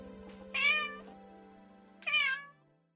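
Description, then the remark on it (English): Two clear cat meows, about a second and a half apart, each a short rising-and-falling cry, fairly loud over a steady low hum. “Now, apparently he used to do that when I was there, but it was the first time I actually heard a cat meow in, gosh, it had to have been a long time.”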